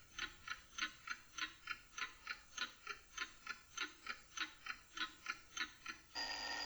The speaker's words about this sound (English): And there's the buzzer.